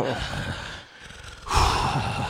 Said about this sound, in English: It could just be me heavy breathing into the microphone. It could be both of us.